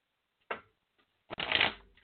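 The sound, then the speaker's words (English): Tarot cards being shuffled: a short papery snap, a brief pause, then a longer dense riffle of cards fluttering together, heard alone with no talking. “I still got a shuffle for you.”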